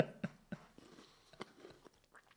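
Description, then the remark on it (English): Someone chews food, with a few irregular soft crunches and moist mouth sounds over a couple of seconds, fairly quiet and with no talking. “So Alicia Silverstone is saying, I need to stop eating. I'm just eating during my podcast.”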